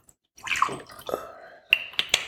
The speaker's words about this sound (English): Okay, I need to pour more sake. Terrible. Pour me.